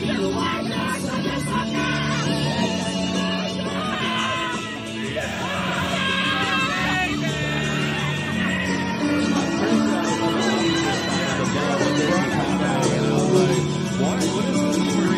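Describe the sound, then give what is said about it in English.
A crowd of voices chants and yells together in a loud, unbroken stretch of ritualistic chanting during an energy circle, overlapping shouts and whoops rising over a steady droning group sound. “No, that was chanting. Yeah, that was ritualistic chanting.”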